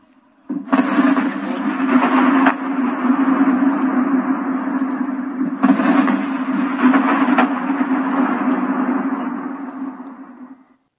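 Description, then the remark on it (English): Two heavy explosions at night in Kyiv, Ukraine, several seconds apart, each a sudden boom that rolls and echoes for a long time, with a few sharper cracks and a steady low hum underneath. “Just one of several videos online with sounds of explosions.”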